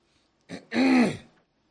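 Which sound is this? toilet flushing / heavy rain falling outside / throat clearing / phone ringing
throat clearing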